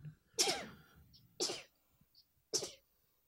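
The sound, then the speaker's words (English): Three sharp sneezes in a row, about a second apart, each a loud burst with a brief voiced catch before the explosive rush of air. No talking in between. “Bless you. Bless you.”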